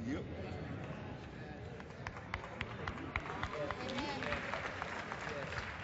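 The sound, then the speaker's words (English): Scattered sharp claps ring out from an audience, irregular, over a dense murmur of crowd noise and overlapping voices. “You hear that clap there?”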